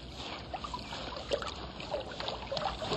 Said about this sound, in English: I found a brook. Oh, let's see. Oh, it's so big.